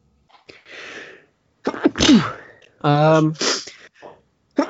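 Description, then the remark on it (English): A loud sneeze bursts out after a breathy inhale, followed by a brief voiced sound and a bit of speech. “Bless you.”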